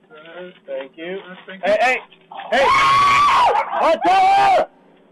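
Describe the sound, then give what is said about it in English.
A loud, shrill human scream, long and sustained with a wavering pitch, bursts in after a few seconds of brief talking and holds for about two seconds before cutting off. “That scream is unreal, right?”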